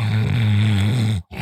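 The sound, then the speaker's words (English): A dog snores with a loud, low, rumbling drone held for over a second, then a brief silent gap before the next breath begins. No one speaks. “It's definitely hear your dog snoring in the background.”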